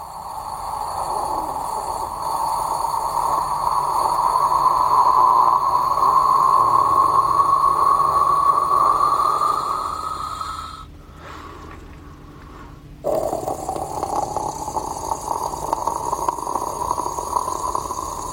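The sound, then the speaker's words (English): A voice imitates a Keurig coffee maker brewing a cup: a long, steady humming whine over breathy hiss that slowly rises in pitch, a short pause, then a rougher hissing gurgle resumes, without the click at the end. “This is my impression of a Keurig coffee maker.”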